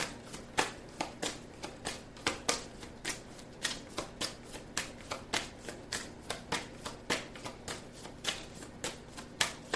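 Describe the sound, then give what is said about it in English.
A deck of cards being shuffled and drawn for a card reading for Leo, three cards drawn: a steady run of crisp, papery snaps and flicks in a quick, slightly uneven rhythm, fairly quiet, with no talking. “May I have a card, please, for Leo?”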